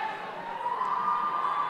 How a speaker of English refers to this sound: She's making a return. She's charging onto the pitch now, and that's why you can hear such an emphatic Leeds cheer.